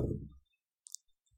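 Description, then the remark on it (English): A dull thump on a tabletop fades out, then a quick cluster of small, sharp clicks follows as dice are rolled during a tabletop role-playing game, tumbling briefly and settling. It is fairly quiet, with no talking. “I rolled the wrong size dice.”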